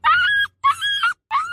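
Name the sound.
dog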